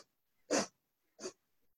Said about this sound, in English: now on each of the sniffs, try to move the navel point. I realize it might seem unusual and difficult, but just try it and go slowly. So try to get familiar with this action. You're going to inhale in 5 equal sniffs.